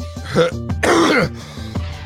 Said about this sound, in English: They're just coughing in the camera. Oh my god. He's all right. It sounds like he's gonna throw up.